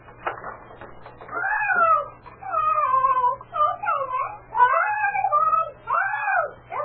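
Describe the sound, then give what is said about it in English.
A talkative parrot squawks and chatters in a continuous run of loud, warbling calls that rise and fall in pitch, following a brief rustle at the start; no people speak. “You're getting awfully fed up with that parrot.”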